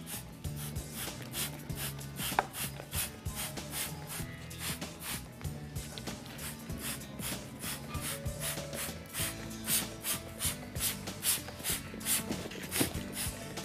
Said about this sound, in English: And here I've got an organic insecticide, so that's not going to harm the environment. But I need to really spray it thickly to get the mealybug completely covered. And you need to spray all parts of the plant.